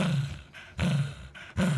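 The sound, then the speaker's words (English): A dog named Dr. Marvin growls in three low, rumbling bursts, each swelling and fading in a steady rhythm. The growl is moderately loud, with no talking over it. “If you're watching Vimeo, you're probably seeing that his chair is being taken up by our dog.”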